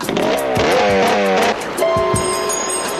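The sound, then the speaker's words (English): A motorcycle engine revs loudly, its whine climbing in pitch through repeated surges, briefly dropping off, then roaring up again and holding a steady high drone, as Wonder Woman takes the motorcycle to chase Montalban down the Snake River. “hey, there's a motorcycle Ex Machina here.”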